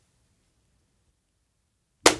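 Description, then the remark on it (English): After a stretch of near silence, a single sharp, loud clap rings out, like several people clapping once in unison, with a short bright decay and no talking. “So we're, when we're all clapping good.”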